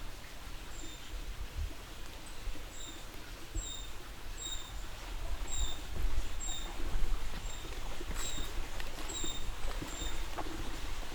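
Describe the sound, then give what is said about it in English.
A brown creeper gives a steady series of thin, very high-pitched call notes, repeated every second or so over the constant loud rush of a flowing creek. “That I think is a brown creeper, very high pitched right now.”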